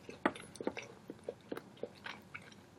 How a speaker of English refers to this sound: Sorry, trying to chew through this quesadilla here. This quesadilla, if I'm being honest, is probably the best quesadilla I've ever had.